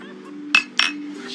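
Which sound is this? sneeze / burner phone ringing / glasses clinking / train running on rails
glasses clinking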